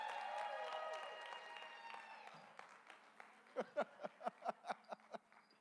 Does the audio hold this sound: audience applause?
yes